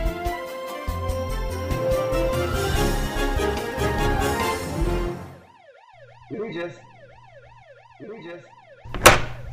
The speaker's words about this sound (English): Regis, what's up with these sirens? Oh, that is just the spoiler police.